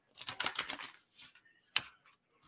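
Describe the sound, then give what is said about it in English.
A rapid flurry of light papery clicks and slaps, like several playing cards spilling out of a deck, followed by a brief pause and one sharper snap. No one speaks. “This was too many cards hopping out.”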